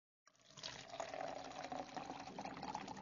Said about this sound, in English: Careful not to injure myself, I pour hot tea into each cup when it's ready from the bustling kettle.